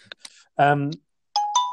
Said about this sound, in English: Hold on. Sorry, that was my mum ringing.